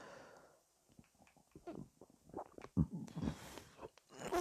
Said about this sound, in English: Shit, I got the burps really bad. That's not good.